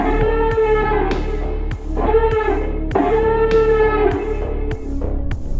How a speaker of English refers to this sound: But before a word gets said, the sconces turn red. And you hear a blaring sound, almost like an alarm, go.